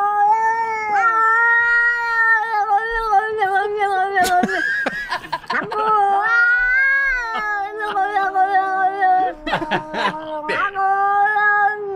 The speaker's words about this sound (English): Very Ravy-centric because we had this great pair of English kitty cats who were telling each, who were talking like on a fence post, telling each other that they love each other.